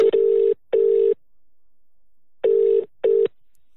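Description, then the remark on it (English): A phone call to someone's mum ringing on the line: two pairs of short steady ringback tones, a double ring, a pause, then another double ring, clear and fairly loud with no voices. “Why don't we find out and give her a call right now and see if she's going to give me money?”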